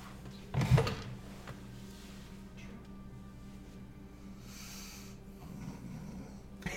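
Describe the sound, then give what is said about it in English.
A person imitates a snore with one short, loud, rasping snort near the start, followed by a quiet, steady low hum with no talking. “I will think a snore.”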